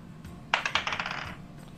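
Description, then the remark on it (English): Dice rattle across a hard table for a strength roll in a game, a sharp first clack followed by a quick run of lighter, bright clicks that tumble and settle within about a second. “Where's my strength? Strength roll. Ooh, plus 9.”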